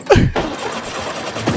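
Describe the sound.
A car engine sputters and coughs as it tries to turn over: a rough initial burst, then an uneven, pulsing rattle that never quite catches.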